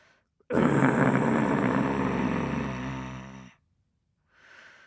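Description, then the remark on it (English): A deep, low tiger growl rumbles loudly for about three seconds, rough and sustained, then stops and gives way to a brief, softer breathy exhale. “Suddenly, in the darkness, he heard a deep, low growl.”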